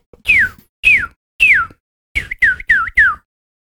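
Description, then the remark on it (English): A swallow calls with a series of loud, clear whistled notes that slide downward in pitch, three spaced evenly, then four coming faster in a quick run, with no talking. “Is that a sparrow? No. Swallow.”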